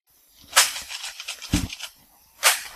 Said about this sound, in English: Yes, the unmistakable sounds of chainsaws whacking trees with sticks.